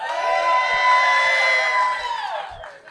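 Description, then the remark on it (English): A morning crowd at CPAC cheers and whoops with many overlapping voices, a loud, steady roar of shouting that holds for a few seconds before tapering off at the end. “We got kind of a crowd. Morning CPAC crowd.”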